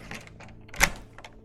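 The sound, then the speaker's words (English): A house's door locks being unlocked after midnight for police at the door: a run of small metallic clicks and rattles, then one sharp, louder snap partway through, followed by a few softer clicks. No one speaks. “Give me a second with the friggin' locks.”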